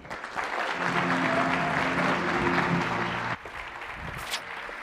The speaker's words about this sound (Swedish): Vänligen ge dem en varm applåd.